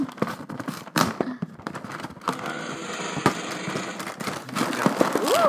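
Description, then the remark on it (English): A cereal package is torn open with crinkly, crackling rustles and several sharp snapping pops, steady loudness throughout, and a brief voiced sound rising near the end. “And now the satisfying opening sound.”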